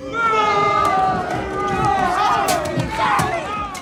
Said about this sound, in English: Mark, please insert Boo This Man sound drop.